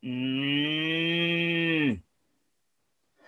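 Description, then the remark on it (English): A single mechanical moo from a children's toy moo box, a little cylinder with holes in the top, turned over; a steady, reedy bovine tone lasting about two seconds that sags in pitch at the end, followed by silence. “This is what I call a Moo box. It was just a little cylindrical thing with holes in the top.”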